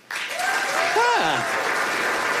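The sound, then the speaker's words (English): Scattered applause from a comedy audience answering Alex Edelman's request to clap if they have heard of Coco the Gorilla, a steady wash of clapping that starts abruptly and holds fairly loud throughout, with a brief vocal whoop or murmur rising and falling partway through. “A few of you guys clapping, some of you not.”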